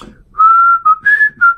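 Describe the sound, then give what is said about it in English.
A person whistles a short, wavering tune through pursed lips, four or five clear sustained notes with brief breaks between them, fairly loud, with no talking. “As I had time to put my lips together and try to whistle.”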